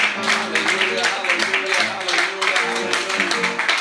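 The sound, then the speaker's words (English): A crowd claps their hands together in praise of the Lord in steady, overlapping bursts while voices call out and sing loudly over the applause, with lively noise. “Let's give the Lord one more good hand clap of praise.”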